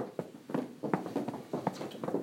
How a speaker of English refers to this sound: All right, stomp out your legs.